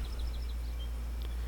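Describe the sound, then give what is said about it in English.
Faint birds chirping outdoors: a quick run of five thin, high chirps, then a couple of scattered ones, over a steady low rumble with no talking. “Can you hear the birds?”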